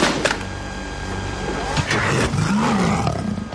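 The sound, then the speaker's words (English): A loud lion roar sound effect from a movie, following a warning giving 15 seconds to comply: a deep rumbling growl sustained for a few seconds with a rising and falling snarl near the end, heard alone without speech. “But also after its warning, you know, and like when you have 15 seconds to comply, and there's a lion roar.”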